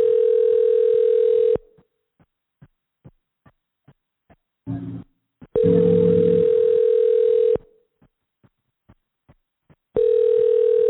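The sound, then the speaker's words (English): A phone ringback tone repeats unanswered on a call to a U.S. phone number: three steady, buzzy rings separated by long pauses filled with faint regular clicks and a brief burst of line noise, clear. “So he is here with a U.S. number, but it's not working.”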